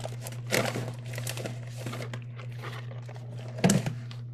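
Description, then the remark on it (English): Crinkling of a snack bag, with irregular crisp rustles and a sharper crunchy burst near the end, over a steady low electrical hum. No one speaks. “We're gonna get some snack ASMR. Snack bag.”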